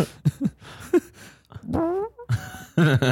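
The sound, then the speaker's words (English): A string of fart noises from a TikTok video played back through a small speaker: several short sputtering bursts, then a longer squeaky, rising blast and a final buzzy rumble, with no talking over them. “Just fucking fart fetish TikTok.”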